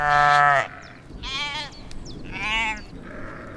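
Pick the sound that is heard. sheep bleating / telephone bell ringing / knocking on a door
sheep bleating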